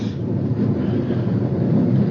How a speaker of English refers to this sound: Oh, the rain. It started. It's coming down like crazy.